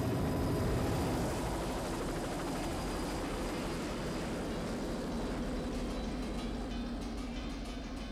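A helicopter flies by, its loud, steady engine roar and rapid rotor chop filling the whole stretch without letup, with no voices.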